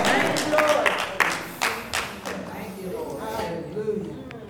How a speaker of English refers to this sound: And we can clap our hands and say, thank you, Jesus.